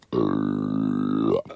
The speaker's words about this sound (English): Sorry, there's a belch coming.